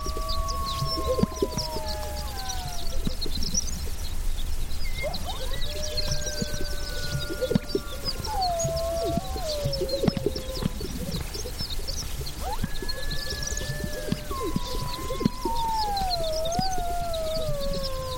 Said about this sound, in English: We leave you this week near the Owyhee Mountains in southern Idaho, just before sunrise. Jeff Rice recorded these sage grouse strutting and puffing up their chests as part of their spring mating ritual, while two young coyotes call in the distance.